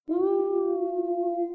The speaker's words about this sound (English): if you are still just on Crave and you want to pace yourself and read Crush and Cover later, make sure to listen out for the wolf howl.